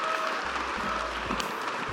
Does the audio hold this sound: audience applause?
yes